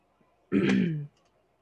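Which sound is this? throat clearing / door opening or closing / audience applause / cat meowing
throat clearing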